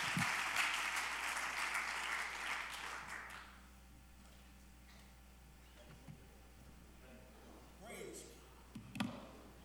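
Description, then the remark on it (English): A church audience claps together in a dense, steady burst of applause for about three seconds as they are seated, then it fades out, leaving quiet room noise with a few faint stray sounds. “Clap your hands one more time as you're seated.”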